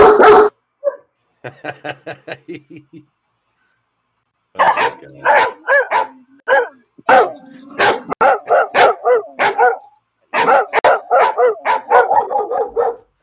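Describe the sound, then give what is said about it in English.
Several dogs in the studio next door bark in rapid, overlapping bursts, loud and insistent, after a few short higher-pitched yips and whines at the start; the barking comes in quick clusters with brief pauses. “I have dog bites in the studio next door. Go away.”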